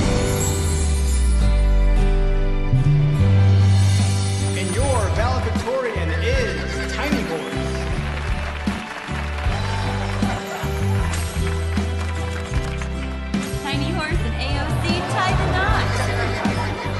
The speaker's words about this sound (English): This is incredible. Tiny horse, everyone. There he is, my tiny horse. He's extra tiny today.